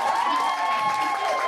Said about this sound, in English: We're going to clap for them now.